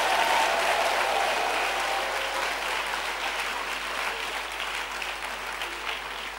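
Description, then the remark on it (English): A church audience claps hands at the preacher's call during a service, in a dense, sustained burst of applause lasting several seconds, loud and even throughout, with no voices rising above it. “Clap your hands and let that sleep leave your eyes now.”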